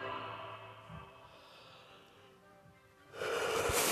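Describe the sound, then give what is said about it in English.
A long, drawn-out yawn with a voiced, wavering tone that slowly fades, ending in a burst of breathy exhalation. “Sorry, I'm yawning.”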